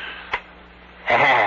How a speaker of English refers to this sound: That clock, the way it ticks.